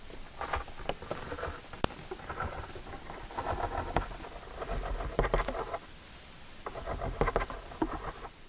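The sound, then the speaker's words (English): A wolf spider drums its front legs on dry leaves, making bursts of rapid, soft pattering and rustling that come in rhythmic clusters, fairly faint, with no voices. “the spiders move around on leaves and beat both their front legs in a rhythmic beat as if they're hitting different drums in a drum set.”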